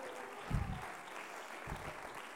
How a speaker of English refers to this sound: Oh, clap your hands unto the Lord now.